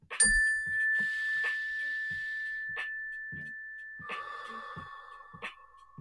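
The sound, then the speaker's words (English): A mindfulness bell is struck, its clear tone ringing and slowly fading for several seconds before a second, lower strike sustains, with soft faint taps in the background and no talking. “When you hear the mindfulness bell, everybody just take a slow, deep breath and remember where your feet are currently planted, and also remember that this moment is all we have.”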